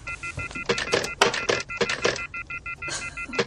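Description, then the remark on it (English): A rapid series of touch-tone telephone keypad beeps, each short dual-pitched tone evenly spaced, with some louder clicks and handling noise mixed in, with no talking. “Now, listen, everybody, we're going to see if we can get in contact with the caller because we do have a special. Star 69, then?”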